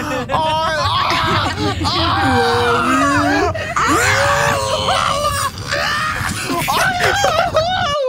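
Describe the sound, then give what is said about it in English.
Several people scream loudly and continuously for about eight seconds, their shrill, wavering voices overlapping, with brief dips before the shrieking surges again. “But he's still singing. We're screaming.”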